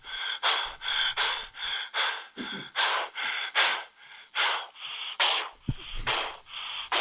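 Loud, rapid heavy breathing, about a dozen harsh, gasping breaths in a steady rhythm with no talking, from a played recording of Mel Gibson.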